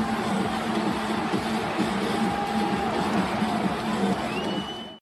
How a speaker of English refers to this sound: The crowd on his feet applauding.